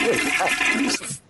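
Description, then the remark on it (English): A toilet flushes, a loud rushing gush of water that swirls steadily for about a second, then briefly drops away before another burst of sound. “You got that toilet flush?”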